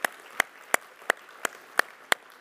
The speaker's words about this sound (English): So, everyone who serves up here and everyone who serves behind the scenes, you have a huge job, and I just want to say thank you, and I think we should all say thank you. Let's give them a hand, a round of applause.